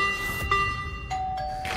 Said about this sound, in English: And there goes the doorbell, so that could be The Babysitter.